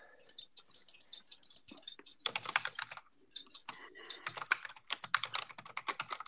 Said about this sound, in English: Okay, sorry. There's going to be a little bit of typing and a few silence because we're spitting things in.